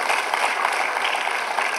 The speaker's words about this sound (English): Can we just give them a round of applause? Because this was very brave.